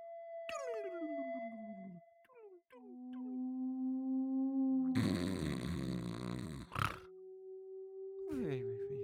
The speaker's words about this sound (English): Waymate, play whale sounds.